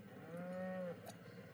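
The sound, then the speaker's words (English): A single cow moos once, a steady low drawn-out call lasting about a second before cutting off, heard fairly clearly over faint outdoor background noise. “There's a cow.”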